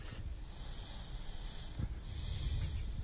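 A sleeping man snores and breathes heavily, with low rumbling snorts and airy wheezing exhales, fairly quiet and close against a steady background hiss. No one speaks.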